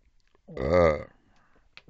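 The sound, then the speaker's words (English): A single drawn-out burp lasting about half a second, low and rough with a voiced, throaty tone, standing alone against a quiet background. “That's four burps, I think.”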